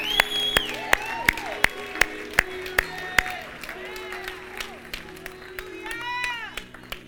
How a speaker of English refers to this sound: You know why they're cheering? Because we've all been there.